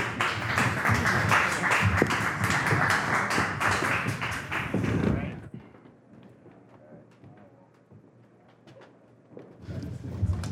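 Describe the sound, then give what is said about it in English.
An audience breaks into loud, dense applause for a panel of speakers, lasting about five seconds, then cuts off to a quiet murmur before a short burst of clapping returns at the end. “So please give me a warm round of applause for them.”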